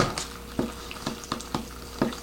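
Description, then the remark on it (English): Wet, squishy stirring with repeated soft slaps and clicks as a creamy sauce from a packet is mixed through Simple Truth noodles, roughly every half second, with a low steady hum underneath and no talking. “We're gonna pour the sauce packet in here.”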